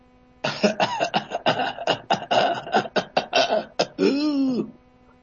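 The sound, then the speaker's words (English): A paroxysmal coughing fit from bronchitis, with no inspiratory stridor and no wheezing: a dozen or so harsh, rapid coughs in an unbroken string, fairly loud, ending with a drawn-out voiced breath. “That's bronchitis and paroxysmal coughing. You'll notice that there is no inspiratory stridor and there is no wheezing.”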